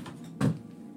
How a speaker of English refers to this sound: You just knock my stuff over. No, it didn't sound like that. It sounded further away.